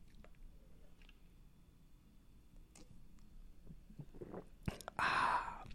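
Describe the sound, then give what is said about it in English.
Someone takes a sip of beer: soft wet mouth sounds, then a short, louder slurp and swallow at the end. “But think about it just for as long as it takes me to have a sip of beer.”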